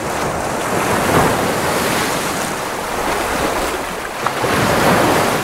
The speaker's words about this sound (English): likes some waves crashing